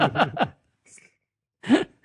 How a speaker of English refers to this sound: I'm hearing somebody breathing. I think it's stalking me right now.